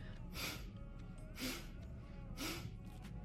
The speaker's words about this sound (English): It's only, you know, exhale through the nose, and it's called glow breathing. And honestly, it gives you a beautiful skin, and it's great.